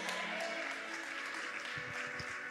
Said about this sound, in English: When you clap and when you get excited, you are celebrating life.